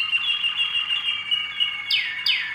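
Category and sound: bird, canary singing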